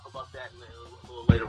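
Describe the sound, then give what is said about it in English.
Faint, tinny voices of livestream audio play back as if through a speaker, a hollow delayed echo of the stream, before a louder burst of sound at the very end. “Yeah, I hear that echo. Is no, the echo, echo of the stream, because I'm trying to be in the chat and stuff.”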